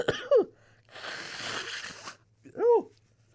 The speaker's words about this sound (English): Sorry, excuse my sneezing right now.